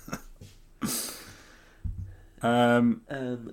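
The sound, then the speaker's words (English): Heavy breathing from one person: a noisy, breathy exhale followed by two loud, voiced, drawn-out breaths that sound partly groaned. “Heavy breaths.”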